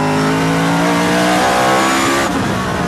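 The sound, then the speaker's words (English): A loud race car engine drones with a steady high-pitched whine, then its pitch abruptly shifts near the end as it drops back into second gear for the corkscrew. No one speaks. “Then it's back into second, I think, for the corkscrew.”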